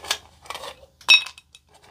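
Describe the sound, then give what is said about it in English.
A couple of fresh ice cubes from a Yeti drop into a glass of water: three separate clinks, the last one the loudest, with a brief glassy ring before it fades. No one speaks. “I'm going to sip this water down so I can get a couple of fresh ice cubes in there.”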